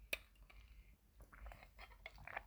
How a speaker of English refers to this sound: Right, so let me just take a sip of water.